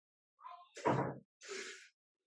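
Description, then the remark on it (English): A door is shut: a short creak, then a solid thud, followed by a brief rattling latch sound, with no talking. “I'm awake. I'm recording. Shut the door.”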